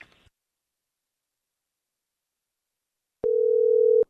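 A single steady ringing tone on a telephone line, from a call placed to reach a woman's daughter, sounds loud near the end, after a brief click and a few seconds of silence. No one speaks.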